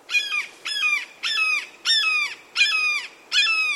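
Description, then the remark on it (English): A red-shouldered hawk gives a series of six loud, emphatic, harsh cries, evenly spaced about every two-thirds of a second, each slurring slightly downward, clear with no other sounds. “So, when you're in the right neck of the woods, keep an ear out for an emphatic cry.”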